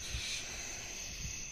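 bird, screech owl call

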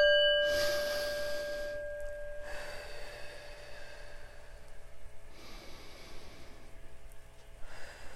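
singing bowl ringing

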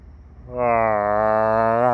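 human body sound, yawn

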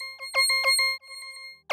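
signal or alarm, phone ringing

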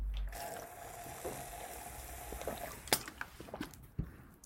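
food or drink, slurping a drink

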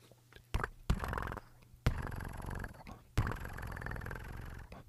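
animal, cat purring

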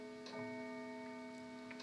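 household object, clock chiming the hour

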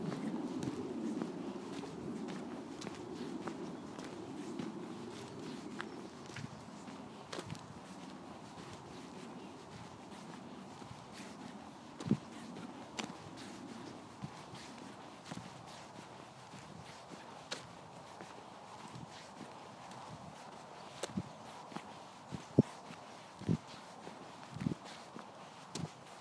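animal, horses walking

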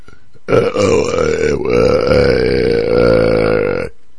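human body sound, loud burp

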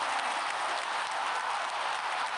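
crowd, applause

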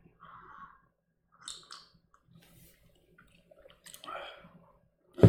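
food or drink, sipping coffee

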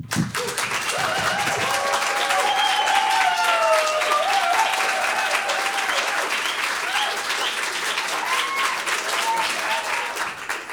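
crowd, audience round of applause

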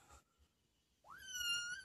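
animal, cat meowing loudly

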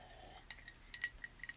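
household object, glass clinking

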